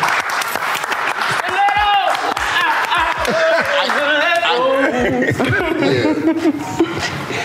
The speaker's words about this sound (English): Y'all ain't gonna clap it up for it.